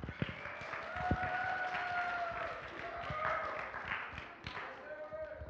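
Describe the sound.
A crowd applauds steadily for several seconds, dense clapping mixed with scattered whoops and cheering voices, fairly loud and sustained throughout.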